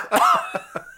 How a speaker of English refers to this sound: Oh, distinctive cough. Your phlegm is oaky.